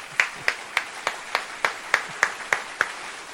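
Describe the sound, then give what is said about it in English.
Applause in the form of a slow, steady clap: about ten sharp, evenly spaced claps at a regular rhythm, fairly loud, with no voices. “Applaud that woman.”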